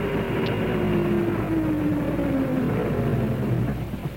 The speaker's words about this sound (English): Well, as the lights and the sound of the engine got nearer, she was at first uneasy, then plainly scared.